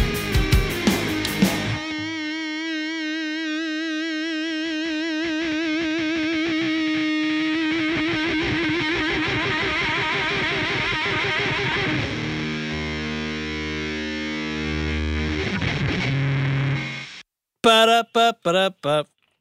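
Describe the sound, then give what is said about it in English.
An electric guitar played through a fuzz pedal in a demo gives sustained, buzzing distorted notes and chords with a steady hiss from the pedal underneath, ending in a few short choppy bursts before cutting off. No one speaks. “I haven't mixed the demo yet, but I am not going to filter any of the hiss out. It is part of the pedal.”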